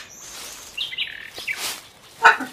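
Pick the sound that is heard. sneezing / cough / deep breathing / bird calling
bird calling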